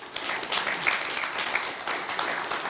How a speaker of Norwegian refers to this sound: Gi en varm applaus til administrerende direktør I Imenco